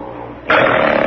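A man snores loudly in his sleep at 4 o'clock in the morning: after a quieter low rumble, a harsh, rasping snort kicks in abruptly and holds steady, rough, with no talking.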